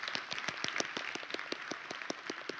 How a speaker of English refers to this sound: You want to keep clapping? Keep clapping. Amen. Love a church that claps.